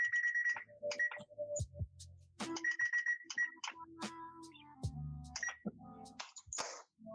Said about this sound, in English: In the oven they go now. And we're gonna hope that these take like 10-15 minutes. There's nothing really super heavy in here. Timer.